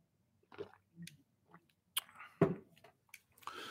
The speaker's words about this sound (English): I'm going to drink a sip of water first.